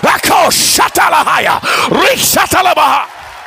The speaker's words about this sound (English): Would you clap your hands and shout unto him?